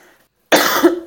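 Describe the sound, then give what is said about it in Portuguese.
After a moment of near silence, a person with an allergy gives a loud, harsh cough, a raspy half-second burst, with a second cough starting right after. “Que dia chato para começar num podcast com esta tosse toda.”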